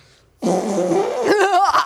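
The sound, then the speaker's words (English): A loud, buzzy fake fart made with the mouth, a sustained raspberry lasting about a second that breaks into a wobbling, laughter-like sputter at the end. “That was a real fake fart.”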